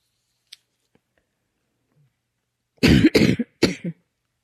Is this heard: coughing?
yes